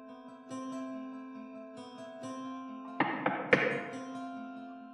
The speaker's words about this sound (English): I heard another knock, and I am back at the tower with you. Open the door again. No one is there.